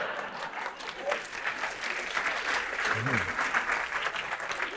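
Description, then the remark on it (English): Steady audience applause, a dense wash of many hands clapping at an even level throughout, with a faint murmur of voices mixed in. “That's an applause break.”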